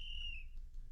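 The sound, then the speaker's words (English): A single shrill, high-pitched whistle holds a steady tone for about half a second, then cuts off, leaving only a low background rumble with no talking. “That's a pretty serious whistle.”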